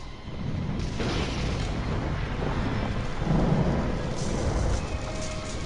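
A loud thunderclap from a lightning strike rolls into a sustained, heavy rumble over steady rain-like hiss, swelling again near the end with no one speaking.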